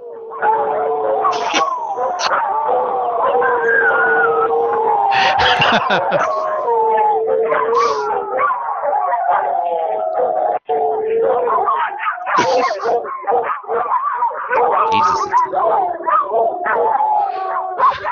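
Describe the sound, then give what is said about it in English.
Human voices imitate dogs, with sustained howling tones and sharp yelping barks overlapping loudly for about eighteen seconds, pitch sliding up and down continuously. “That was actually some good barking there. She sounded like fucking dogs.”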